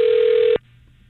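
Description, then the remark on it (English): A single steady electronic ringback tone on an outgoing phone call sounds loudly for about half a second, then cuts off abruptly, leaving only faint background hiss. “I don't know where we're calling.”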